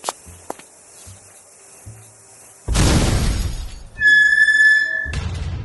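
A few faint clicks give way to a sudden loud explosion as a cell door is blown open, followed by roaring, crackling debris, a brief high ringing tone, then another burst of crashing noise.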